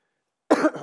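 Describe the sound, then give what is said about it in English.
A single abrupt cough, slightly muffled as it is coughed into an arm, after a moment of silence; no one speaks. “I'm learning how to cough in my arm.”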